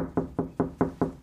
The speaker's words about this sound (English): Keep on knocking, but you can't come in.